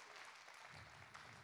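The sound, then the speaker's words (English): An audience claps steadily as a hand clap of praise to the Lord, a dense wash of many hands applauding together, with a low rumble of voices faintly underneath. “Now let's give the Lord a hand clap of praise.”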